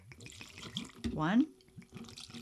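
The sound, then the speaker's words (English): A short splash of about 1.5 ounces of vodka free-poured into a cocktail shaker for a martini, its gurgle rising in pitch as the tin fills for about half a second, with a man talking just before and after. “So 1.5 ounces of vodka. Let's free pour this bitch in there.”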